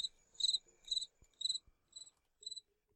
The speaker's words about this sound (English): I should have queued this up. You should have. Crickets.